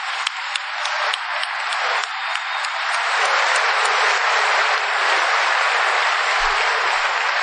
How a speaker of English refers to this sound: I want to thank this committee that we just had a beautiful dinner together and to hear how hard this committee has been working. I'd love you all to give a round of applause to them.